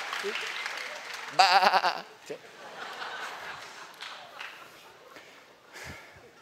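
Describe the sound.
A sheep lets out one short, loud, wavering bleat, rising briefly above a steady noisy background with faint indistinct voices.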